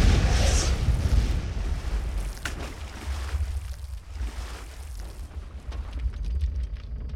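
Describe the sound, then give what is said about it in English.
The submarine Hunley's torpedo explodes against the hull of the U.S. naval vessel Housatonic: a heavy, deep boom, then a long, loud rumble and roaring, churning water that slowly thins out as the ship sinks within five minutes in about 25 feet of water. No voices. “An explosion rocked the U.S. naval vessel, and within 5 minutes, it had sunk.”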